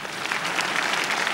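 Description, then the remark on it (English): An audience in a church claps together in a dense, steady burst of applause, many hands blending into a bright, continuous patter with no voices rising above it. “Clap for yourself.”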